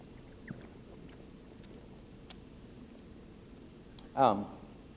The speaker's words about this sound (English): Hold on a second. I got a good thought, but I got to drink some water.